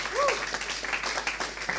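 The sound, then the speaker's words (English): A crowd applauds with steady, dense clapping that fills the whole moment, welcoming group leaders coming out at a church gathering, a brief rising whoop or whistle briefly riding on top near the start. “I want you to give them a clap again.”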